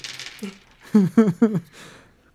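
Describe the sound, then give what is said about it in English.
Dice clatter on a hard tabletop during a game: a brief rattling shake, then three sharp, ringing clacks in quick succession as they tumble and settle, fairly loud, landing a 3, some 4s, 5s and 6s. “Okay, oh wow, what a weird roll. Nothing but a 3, some 4s, and 5s and 6s.”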